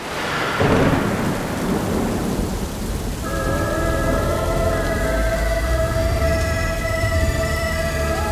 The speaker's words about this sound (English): Come in from the storm.